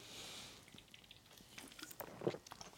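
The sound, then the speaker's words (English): A quiet sip of PBR (Pabst Blue Ribbon) beer: a soft airy hiss followed by wet mouth clicks and a swallow, with no talking. “Take a sip of beer here.”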